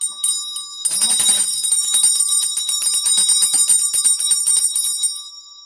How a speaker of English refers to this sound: You guys are telling me they want me to ding the bell.